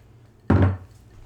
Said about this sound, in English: You hear that nice swallow?